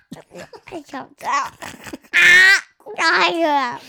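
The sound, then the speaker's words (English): A voice imitates retching and vomiting: a run of short gurgling, gagging bursts followed by two loud, strained, drawn-out heaves with a harsh, tonal, wavering quality. “Oh, that's a good sick noise.”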